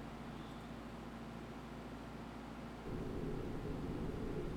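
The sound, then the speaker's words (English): Deep-sea underwater ambience from the Mariana Trench: a steady, muffled low rumble with a hissy wash on top, no voices, that shifts and grows slightly louder and rougher near the end. “It just sounds like water.”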